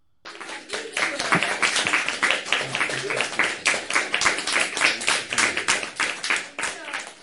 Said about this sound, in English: Give a round of applause to the cynic.